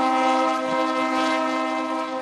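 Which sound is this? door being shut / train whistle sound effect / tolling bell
train whistle sound effect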